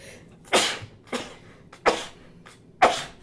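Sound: sneeze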